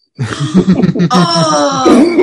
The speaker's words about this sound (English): Oh! Oh, you're making him cough.